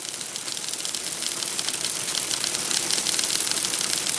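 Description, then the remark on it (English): Dense, continuous mechanical clattering of telex machines in the CyberSyn telex communication center, a rapid overlapping chatter of keys and print heads holding a steady, fairly loud level with a bright, hissy edge and no voices. “Soon, the previously placid telex communication center was filled with a concurrent mechanical clackering unlike any the men had heard before.”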